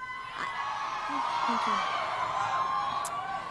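In a played intro clip of Kellyanne Conway, a large audience applauds and cheers in a steady, dense roar, with whoops and shouts rising over the continuous clapping for a few seconds.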